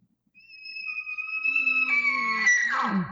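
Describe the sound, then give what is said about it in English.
An elk bugle call with the tone lengthened out, not an alarm bugle but a come-over-this-way call: a long, high, whistling tone with rich overtones that swells steadily in loudness, then breaks into a rougher, descending grunt at the end. “That right there is not an alarm type of a bugle.”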